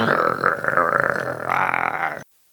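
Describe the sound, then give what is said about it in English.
A person imitates a menacing growl with their voice, voicing a character named Cyril: one loud, rough, guttural rumble held for about two seconds, wavering slightly in pitch before cutting off abruptly into silence. “Cyril starts growling menacingly.”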